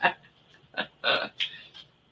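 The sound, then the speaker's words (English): A novelty burp fork lets out a quick series of about five short, raspy burp noises, fairly loud, with brief gaps between them and no talking. “you are playing with your burp fork.”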